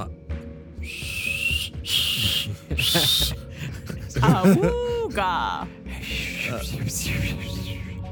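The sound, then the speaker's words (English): A person imitates a badly blown whistle with their voice: several breathy, wavering whistle-like bursts at a high pitch, sputtering and uneven, mixed with airy hisses and a warbling hoot in the middle. “Like he's never blown a whistle before.”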